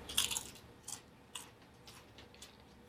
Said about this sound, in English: Now, if you don't like the sound of chewing, you may wish to turn your radio down momentarily.